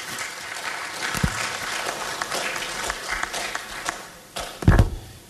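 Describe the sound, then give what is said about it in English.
A crowd gives a round of applause for Madam Lucy Quist at an address on the nation's football. It is a dense, steady patter of many hands clapping at once, punctuated by a couple of dull thuds, with a louder swell near the end. “Please join me to give Madam Lucy Quist a round of applause.”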